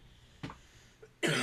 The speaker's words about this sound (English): Sorry to cough at such a climax.